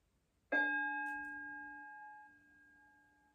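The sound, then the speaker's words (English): A single meditation bell is struck once, ringing out clear with a sharp attack, then its bright tone sustains and slowly fades over a few seconds. “I'm going to play the sound of this bell, which is going to be your signal at the end of today's meditation.”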